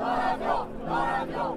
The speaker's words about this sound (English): He is no firebrand, but the crowd got whipped up all the same. A chant of, "This is our home," starts elsewhere in the crowd and picks up in volume. Then it's, "Get on the plane."